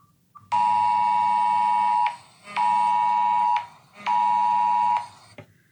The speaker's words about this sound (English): And then the Amber Alert is on the radio, and at the same time, it comes over our phones.